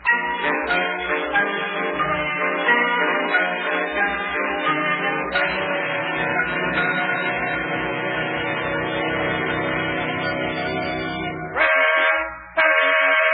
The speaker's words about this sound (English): Oh, I'll bet that's Yuki in the wedding car honking the horn outside. Let me take a look out the window. Yeah, that's him.